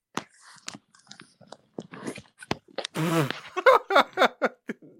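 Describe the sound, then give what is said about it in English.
Someone imitates loud snoring with the mouth into a microphone: a long, rough, rasping snort in the middle, surrounded by clicks, smacks and a string of short, choppy, grunting bursts. “That's why your snoring is so loud, because you're deep-throating the microphone.”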